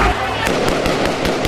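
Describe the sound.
Six or so sharp gunshots from Ukrainian soldiers firing above the heads of an approaching crowd at a police station crack out at a fairly steady rhythm, each a loud, abrupt burst, over a constant noisy background of crowd voices and commotion.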